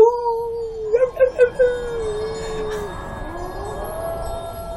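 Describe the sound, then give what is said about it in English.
A troop of elite warriors on a battlefield in the Rus during the Viking Age howl like wolves: one long, wavering howl, a burst of short yelping cries, then a fainter rising howl trailing off, unaccompanied by speech. “Finally, imagery sparks across the screen, and we see an invading army formed up on the battlefield, and we see that the howling is not that of wolves, but, of course, a troop of elite warriors shouting”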